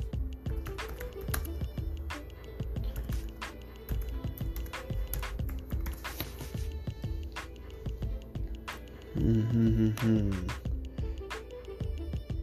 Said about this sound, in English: Let's see. What has been the latest incident, or what's going on with that? I am a slow typewriter, so bear with me.